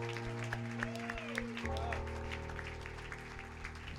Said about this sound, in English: Give the Lord just a hand clap of praise.